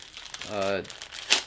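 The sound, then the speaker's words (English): Brittle crinkling of a very tiny plastic bag, folded in half and holding a delivered mask, being opened, with a short voiced sound partway through and a sharper crackle near the end. “So it came in a very tiny plastic bag like this, folded in half.”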